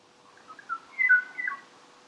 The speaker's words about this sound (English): The song of the Kauai o'o reminds us that many of these sounds we love are perhaps in the scope of our lives simply ephemeral, always at risk of being silenced and disappearing completely.